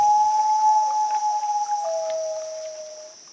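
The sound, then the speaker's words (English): A common loon's haunting wail: one long, sustained mournful tone that steps down slightly in pitch partway through and holds, over a faint steady high-pitched hum. “And in Canada, the iconic bird is the sound of the loon. It's this really haunting.”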